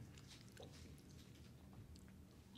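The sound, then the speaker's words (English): Chewing of a crunchy Crunch chocolate bar, with continuous moist crunching and soft clicks of the mouth, steady, with no talking. “I will say, crunch bars are one of my favorite chocolate candies.”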